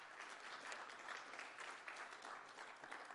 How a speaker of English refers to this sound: You want to give him a round of applause?